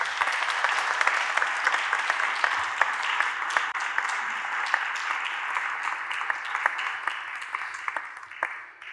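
A round of applause from a sizable crowd, dense overlapping claps sustained steadily for several seconds before beginning to taper off at the end, with no talking over it.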